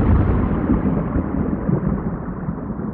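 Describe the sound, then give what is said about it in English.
A deep, muffled roll of simulated thunder, as it might sound on Venus, rumbles steadily for the whole stretch, heavy in the low end with the higher tones dulled away. It is loud, with no voices. “One thing we do know about Venus is that it has lightning. So you might hear thunder.”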